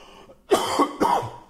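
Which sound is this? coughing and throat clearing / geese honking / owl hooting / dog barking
coughing and throat clearing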